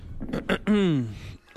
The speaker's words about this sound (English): Why are you clearing your throat?